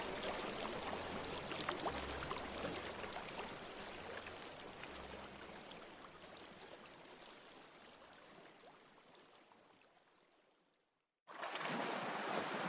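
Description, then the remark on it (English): A river's steady, full-bodied rushing water churns continuously with a low rumble beneath, gradually fading to near silence before abruptly surging back at full strength. No voices are present. “A hushed prayer stole forth from his lips, and I could hear the river churning, massive, eternal, moving.”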